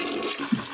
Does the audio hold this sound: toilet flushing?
yes